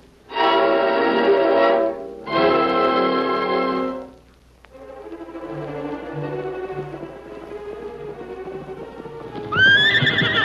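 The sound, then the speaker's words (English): Tonto's horse gallops fast as he rides back from town, with a steady, rapid run of hoofbeats, framed by two loud, drawn-out whinnies at the start and a shorter neigh at the end. Nobody speaks. “That's Tonto coming back from town. He's traveling fast.”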